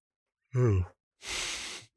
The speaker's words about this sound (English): You sighed whilst yawning. That was guttural. I don't know what happens, but it's about this time I yawn like 3 times and then I stop.